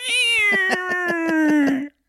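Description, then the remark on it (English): A person imitates a cat with one long, drawn-out meow, loud, slowly sliding down in pitch with a rhythmic, pulsing waver throughout before cutting off abruptly. “that cat was just sitting on the bed watching, going.”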